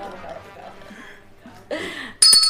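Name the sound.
bell ringing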